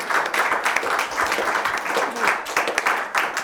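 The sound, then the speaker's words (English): A steady wash of audience applause after a scholarly talk on periodization in the humanities, many hands clapping at once in a dense, continuous patter that holds at a fairly loud level for a few seconds without any voices standing out. “I don't think anyone to feel a spontaneous urge to applaud that.”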